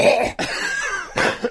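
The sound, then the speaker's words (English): A person coughs with a few harsh, raspy bursts and a throaty rattle between them, loud against a quiet background with no talking. “He could tell I needed to cough, and he wrote it right into the script.”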